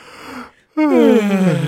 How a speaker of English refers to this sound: That was great. Yeah, it was. We didn't incorporate the yawn before.